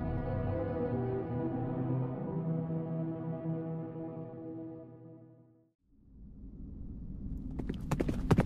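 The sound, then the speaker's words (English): A long, steady droning tone fades out, then a low rumble rises and a quick run of sharp hoof clops from horses being ridden sounds near the end, fairly loud. “Few minutes later, Ranfray and Halfdan were on their horses”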